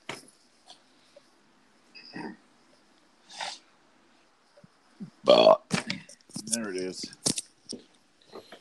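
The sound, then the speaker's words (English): A loud burp rumbles out in a low, drawn-out croak, followed by a few short sharp mouth noises and breathy sounds; scattered faint clicks come before it. “Ooh, I had to put the headphones on as soon as you burped.”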